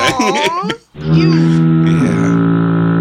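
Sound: foghorn blast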